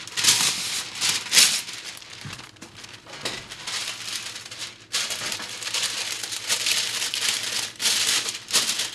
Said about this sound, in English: Okay, so next thing we're going to do is take your parchment paper, put it on your cookie sheet. It'll make it easier for cleanup, all right?